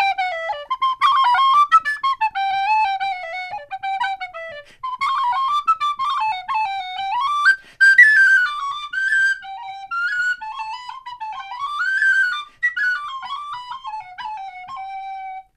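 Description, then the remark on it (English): A tin whistle plays a lively traditional Irish tune solo, bright, its ornamented melody running continuously with quick runs and brief breath pauses, no voices present. “there's a tune called The Piper's Chair, which I might play for you, you know. Want to play for now? You have the tin whistle there.”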